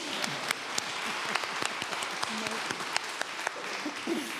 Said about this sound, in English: You can clap now. I know you want to.